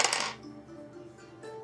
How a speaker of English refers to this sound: I'll roll a percentile dice.